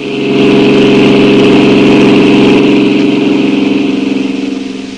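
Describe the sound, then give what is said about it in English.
A car engine runs steadily with a low, pulsing drone, rising slightly as the driver, who has just jumped into the car, pulls away, and fading a little toward the end. No voices are heard. “What Sam told me made me hang up the phone fast, jump into my car.”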